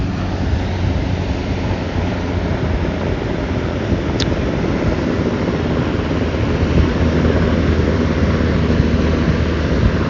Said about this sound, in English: All right, military chopper flying by.